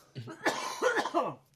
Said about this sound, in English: Sorry, I got a cough here.